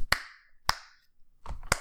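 One person claps a few times, slow and unevenly spaced, each clap sharp and close, with a slightly busier pair of claps at the end and no voices.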